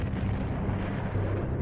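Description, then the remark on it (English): A deep, continuous roar of a volcanic eruption in 1996, heard from a desert road as a big white jet shot straight up into the sky, heavy in low rumbling bass and steady in loudness throughout, with no single sharp boom standing out and no voices. “We heard this loud bang and looked over and we could see this big white jet going straight up into the sky.”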